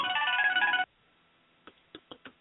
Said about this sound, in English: Who's got the phone ringing there? I know better than that. I know you do.